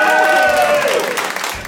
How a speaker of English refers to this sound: Audience, by way of cheer, would you like to invest in my invention?